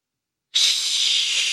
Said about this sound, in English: That's a flush, baby. Yeah. Oh, my God. He's like, you know, you have to hold it down or like do the thing where you jiggle the coat hanger to try and get the suction thing up. He's like, that's all natural indoor plumbing, baby.